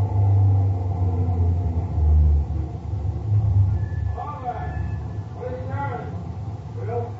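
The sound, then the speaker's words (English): A heavy truck engine rumbles low, loud at first and then settling to a softer idle as the truck stops; muffled voices talk over it near the end. “Think we're coming to the roadblock? Could be. Yeah, he's stopping.”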